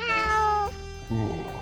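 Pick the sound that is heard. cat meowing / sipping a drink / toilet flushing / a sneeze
cat meowing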